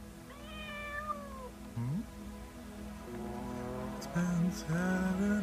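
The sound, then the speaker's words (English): A cat meows several times, with drawn-out, wavering cries, including a long whining call at the start and louder, insistent meows near the end. No one speaks. “Delicious kitty.”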